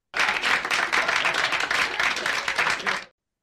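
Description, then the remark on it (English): A burst of crowd applause from a sound-effect device, dense and steady, with many hands clapping together loudly for about three seconds before cutting off abruptly. No voices are heard. “Need like one of those ones that like claps after my takes.”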